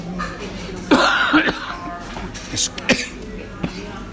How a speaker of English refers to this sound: Excuse me for inflicting that on you. I do not have COVID, but a cough came on because a piece of chips went down my throat in the wrong way.